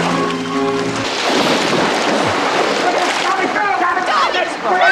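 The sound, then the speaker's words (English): A brief shout gives way to heavy, continuous, loud splashing and sloshing water as people fighting end up thrashing in it, with muffled yelling mixed in. “They always ended up in the water.”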